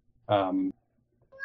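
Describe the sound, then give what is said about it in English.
A cat named Captain Jean-Luc Picard lets out a single drawn-out, loud meow, followed by a short pause and the start of a second meow that is cut off at the end. “And I have a cat again. Very chatty today.”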